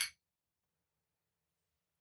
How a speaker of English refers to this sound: So do a quick cheers.